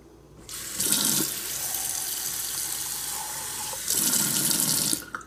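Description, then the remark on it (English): A sink faucet runs steadily into a glass for several seconds, the splash shifting in tone as the water level rises, with brief louder gushes at the start and end. No one speaks. “Then I'm gonna go to my sink and I'm gonna fill up my glass with water.”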